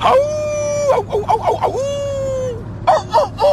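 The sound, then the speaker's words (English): A person imitates a rooster's crow, with two long drawn-out harmonic calls broken by choppy, warbling syllables, followed by a short burst of voice at the end. “That's a rooster. Give me a wolf.”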